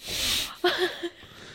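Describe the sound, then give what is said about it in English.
A small dog tucked under a person's sweater snorts or sneezes: a breathy, hissing blast of air followed by three quick, nasal snuffles, fairly quiet, with no talking. “I'm happy you guys heard that, though. That was Patty.”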